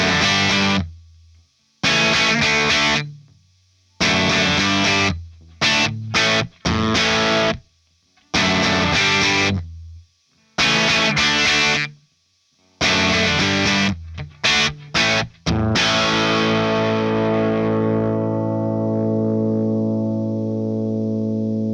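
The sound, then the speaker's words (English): An electric guitar boosted through a Storm boost pedal, distorted, plays loud, choppy chord stabs separated by short silences, then lets a final chord ring out and slowly fade. No one speaks. “Not a bad tone on its own, but let's turn to Starmon and hear how it changes that sound.”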